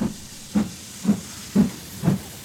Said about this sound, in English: It was an express train, and it didn't stop for an hour